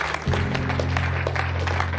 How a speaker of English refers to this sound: Yeah. Clap your hands for God.